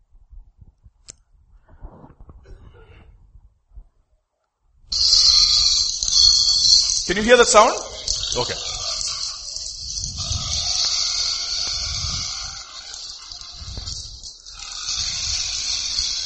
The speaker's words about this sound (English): That's a hog, a pig, being taken for slaughter. Look at that fellow. He'll not give up easily. He doesn't want to go. See that? I mean, that was in Jamshedpur, in one of the brothers' place who has a pig farm.